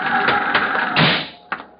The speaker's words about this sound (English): The night wind, pushing up strong from the east, had reached gale strength when the cabin door burst open.